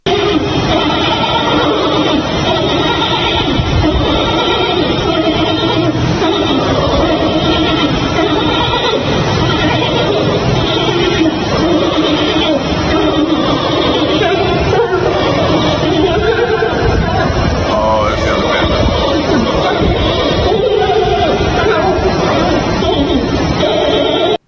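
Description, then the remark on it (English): Giant pandas in a zoo bleating while mating without help: loud, goat-like bleats and squeals repeat almost without pause for the whole stretch, layered over a dense, busy background. “And they showed that the pandas in the zoo were had finally mated without help.”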